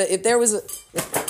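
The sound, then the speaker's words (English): A small water bottle is accidentally knocked off a table and clatters, a sharp knock with a short ringing tone, followed by a second brief rattle as it settles. “Little accident and little water bottle fell off my table. Knocked it off, but that's all right.”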